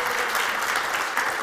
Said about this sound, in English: Are you clapping me off or do you want me to... Right.